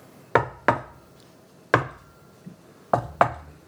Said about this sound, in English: There's a secret knock.